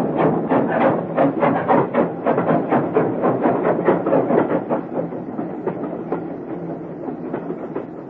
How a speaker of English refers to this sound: As the train sped out of Paddington